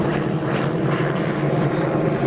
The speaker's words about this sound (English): Can you hear me over the fucking copter? Wait for the copter.